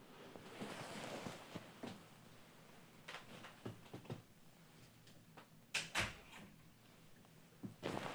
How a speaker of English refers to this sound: Sorry, guys, had to close the door.